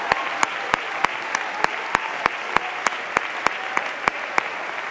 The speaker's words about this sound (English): Now clap your hands and shout to God. He's a great God. Hallelujah.